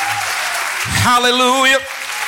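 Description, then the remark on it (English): An audience claps hands to the Lord in a steady, dense wash of applause that fills the whole clip, while a single voice calls out loudly over it for a moment. “Now clap your hands until your hands hurt to the Lord of glory.”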